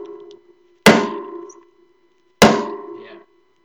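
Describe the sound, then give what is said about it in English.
A hammer strikes a nail twice, about a second and a half apart. Each loud blow has a sharp metallic clang that rings out and fades. No one speaks. “And so as they are nailing Jesus to the cross, can you see that and can you hear it as that hammer is hitting those nails?”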